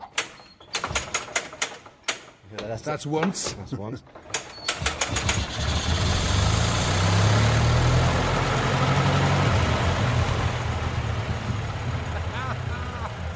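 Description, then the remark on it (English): Irregular clanking and sharp mechanical knocks as the winding handle of an old engine is pushed in and hand-cranked give way to a steady, loud low rumble as the engine catches and idles, with a brief spoken remark over the start. “So you push the handle in, keep it pushing it, and then start winding.”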